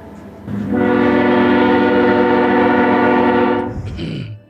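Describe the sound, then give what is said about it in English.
At a station platform, a loud, sustained train whistle blares for about three seconds with rich harmonic tones, then cuts off, leaving a low rumble of the approaching train, which makes the ground shake with vibration. “And the ground starts shaking, not enough to make you fall or anything, but you feel a vibration in the ground. And you hear a very loud train whistle.”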